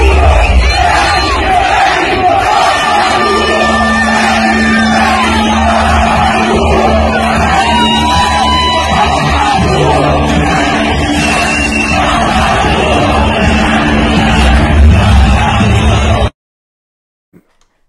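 crowd shouting

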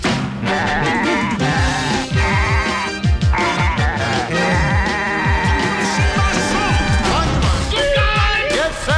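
goats bleating

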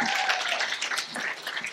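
audience round of applause

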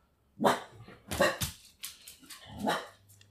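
dogs barking

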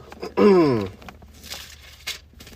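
bible pages turning

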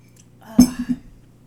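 sipping coffee

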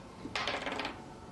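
dice being rolled

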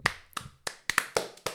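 clapping

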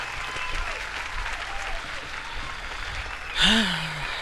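crowd applause

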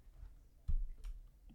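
dice being rolled

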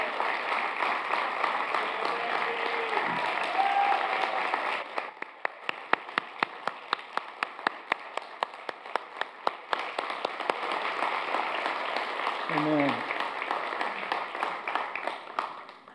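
audience applause

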